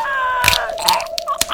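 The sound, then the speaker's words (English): A gruesome crunching and cracking in three harsh bursts over a steady high droning tone: a ghost smashing a man's head against a wall and pushing until his skull cracks. “She pushes and pushes until it cracks.”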